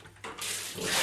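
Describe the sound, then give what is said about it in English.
Water gushes from a tap in a steady, hissing stream, starting softly and quickly growing louder and fuller, with no voices. “Now, there's our water.”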